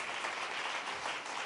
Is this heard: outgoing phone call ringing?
no